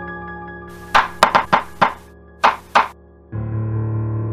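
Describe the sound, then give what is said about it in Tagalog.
Knocking on the wooden door of a parents' bedroom near midnight: a quick run of five knocks, a short pause, then two more, followed by a low steady hum that sets in and continues. “Dala ang kumikinang na kutsilyo, ay kumatok ako sa kwarto nila nanay.”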